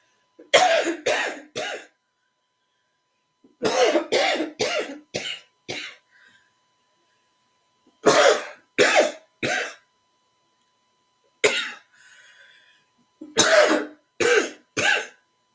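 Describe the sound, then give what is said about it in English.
Repeated bouts of harsh coughing from someone who has been sick come in quick clusters of three or four, with a rougher throat-clearing burst mixed in and short silent pauses between fits. No one speaks. “Pardon me, excuse me, sorry for coughing a little bit too much.”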